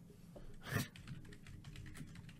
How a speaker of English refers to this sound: Typing. Pacific Rim. Wait, why'd you write Pacific Rim job?